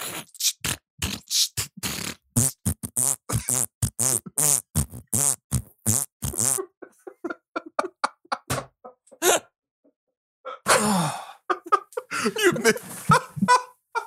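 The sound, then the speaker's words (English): A voice makes rapid mouth fart noises in a bouncy, rap-like rhythm, loud, trailing into sparser sputters before a burst of breathy laughter-like noise. “We vamped and we did a fart rap.”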